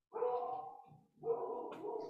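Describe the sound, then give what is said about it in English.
A dog barks, two drawn-out, fairly loud vocalizations with a brief gap between them, and no one talking over it. “My dog does. The dog does.”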